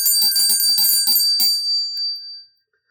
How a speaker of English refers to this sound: Just hear the sleigh bells jingling, ring, ting, tingling too.